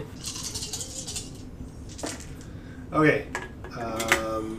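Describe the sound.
A player's dice, a d10, a d6 and a d4, rattle and clatter in a hand during a tabletop role-playing game, then tumble across a hard surface in a few quick bursts of clicks, moderately loud, with a person speaking briefly near the end.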